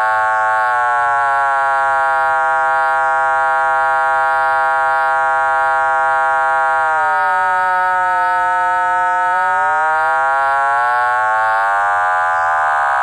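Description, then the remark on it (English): A loud, continuous synthesizer triangle wave under fast sine-wave modulation, giving a buzzy, siren-like drone whose overtones shift and dip midway before gliding back up as the control oscillator's frequency is changed, producing combination tones above and below the audio tone. No one speaks. “And you hear various tones as I change the frequency of the control oscillator.”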